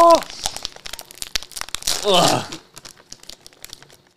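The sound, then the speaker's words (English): A crinkly snack bag is tugged and pulled open, with sharp crackling bursts, a louder tearing rip midway, then scattered small crinkles as the plastic settles. “And none of these bags open.”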